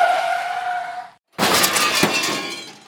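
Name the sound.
car crash sound effect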